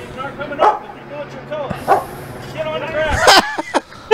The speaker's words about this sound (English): You got two cops. You got a fucking police dog.